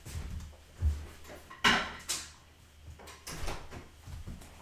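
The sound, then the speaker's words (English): A door is opened to let a cat, Spunks, go out, with a few distinct clunks and a brief rattle of the latch, then a softer thud as it swings, over a low background rumble and no voices. “The theme of today's episode is opening doors for cats.”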